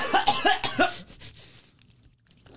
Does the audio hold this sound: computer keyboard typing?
no